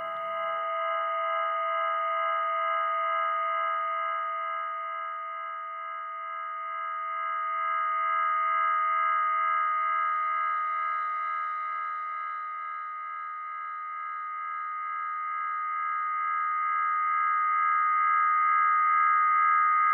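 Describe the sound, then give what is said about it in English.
Audio feedback from looped keys through a delay rings as a dense stack of sustained, mid-to-high pitched tones, growing, swelling and receding slowly in loudness over twenty seconds, with no voices. “And now we really start to feedback, and it takes on a life of its own.”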